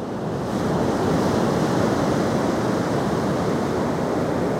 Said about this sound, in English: So, Rebecca Ramirez, almighty producer, cue the waves.